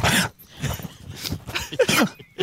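Mike, a Boxer dog, grumbles in a string of short, throaty rumbling bursts, rising and falling with brief pauses between, fairly loud and with no talking over it.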